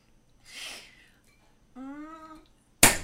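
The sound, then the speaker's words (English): A sparkling wine bottle is eased open: a soft breathy hiss of escaping gas, then a brief rising, whining vocal note, and finally a short, sharp, loud burst at the end. “I mean, like, I don't know how to hold on to that bottle any tighter.”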